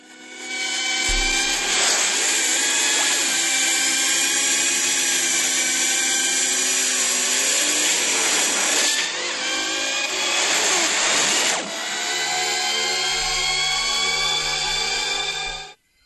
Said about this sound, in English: I guessed that it was the motorbikes, the light bikes from Tron